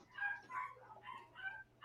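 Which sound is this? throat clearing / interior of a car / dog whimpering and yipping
dog whimpering and yipping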